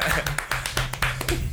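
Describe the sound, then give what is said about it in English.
Scattered hand claps welcoming a special guest, a handful of sharp, uneven smacks over about a second and a half, with a low murmur of voices running underneath. “Round of applause, King.”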